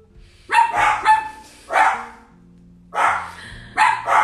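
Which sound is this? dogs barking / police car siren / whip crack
dogs barking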